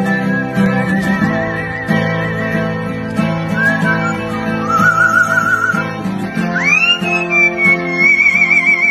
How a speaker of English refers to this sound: So the radio video is this guy strumming his guitar while his talented bird whistles and I want to carries a tune better than a lot of singers.